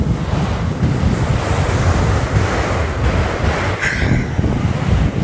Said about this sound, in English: So yeah, I'm not in a perfectly soundproof room, but what I hope you can hear is maybe the ocean.